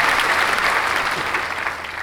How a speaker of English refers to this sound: Everyone, please, a round of applause for that beautiful introduction by studio engineer Devin Alexander.